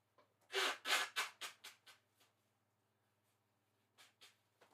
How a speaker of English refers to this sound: Excuse me, if you heard me blow my nose on the mic, sorry about that. I thought I might have been far enough from it. My apologies.